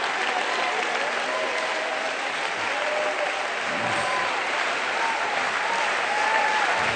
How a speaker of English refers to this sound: I want you to clap your hands unto the Lord for what the Lord's already done.